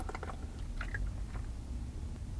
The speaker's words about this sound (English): Excuse me while I grab a drink of water here.